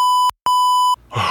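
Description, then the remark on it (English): Two loud, steady censor bleeps at one pitch, a short one then a longer one after a brief gap, covering a spoken name, followed by a moment of muffled voice and background noise. “We'll beep it out. So we always bleep him out.”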